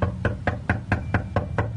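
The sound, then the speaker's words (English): Eight firm, evenly spaced knocks on the wooden front door of a house, steady, with a low background hum and no voices. “Well, tonight, we went to her door.”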